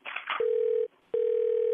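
A telephone line tone plays over the handset as a man places a call to his wife: a brief burst of muffled noise, then a steady, loud electronic hum that cuts out briefly and resumes, clear.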